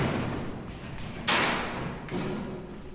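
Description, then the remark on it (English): Two heavy thuds, the first louder, each ringing out with a long, booming echo under the high ceilings of an abandoned prison cell house built in the 1900s, over a steady hollow ambience; no one speaks. “You get an idea of how high the ceilings are just from the echoes.”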